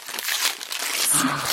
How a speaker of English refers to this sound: This is the sort of thing people do on those ASMR videos, isn't it? Oh, you have to do it a lot slower. Ripping paper. and whispering.